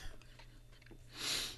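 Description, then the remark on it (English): Someone takes a quiet sip of lemonade: faint mouth noises, then a short, breathy slurping rush near the end, with no talking. “Now, I'm going to tell you the story after I get a sip of lemonade, because it's refreshing.”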